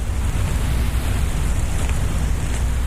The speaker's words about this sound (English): Those are earthworms. The worms are moving through the soil, and the little particles of sand are hitting against each other.